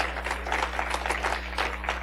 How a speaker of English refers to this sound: Give the Lord a hand clap of praise if you believe it.